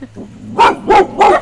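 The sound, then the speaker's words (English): Three sharp dog barks in quick succession, evenly spaced and fairly loud, with faint background noise between them, at a place with many dogs. “Sorry, we have a lot of dogs here.”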